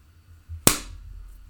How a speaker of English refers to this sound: So we got a countdown so we know where the cut edit point is. So I'm going to make a big slap. Ready? Okay, yeah, you make the big slap.